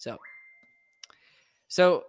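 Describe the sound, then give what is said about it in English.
A phone notification sounds as one faint, steady high-pitched tone held for under a second, followed by a couple of quick soft clicks, with short bursts of talking before and after. “My phone is going crazy.”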